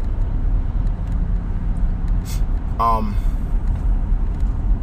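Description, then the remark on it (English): A steady, loud low rumble of road traffic fills the whole stretch, like cars rolling by, with a brief tonal squeal rising out of it midway. “I gotta fight this traffic every day out here, man.”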